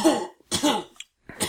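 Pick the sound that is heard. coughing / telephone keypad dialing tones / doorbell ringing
coughing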